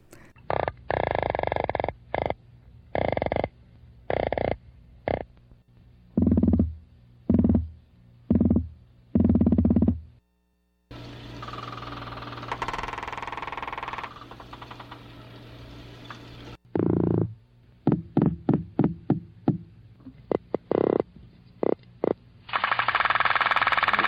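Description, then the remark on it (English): A series of loud, rapid drumming grunts and knocking pulses from Atlantic croaker, striped cusk eel and weakfish making courtship calls underwater, coming in rhythmic bursts with a stretch of buzzy croaking in the middle and no talking. “The Atlantic croaker, the striped cusk eel, and the weakfish.”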